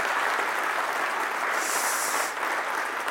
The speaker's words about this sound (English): Can we just give another warm round of applause and say thanks for being with us?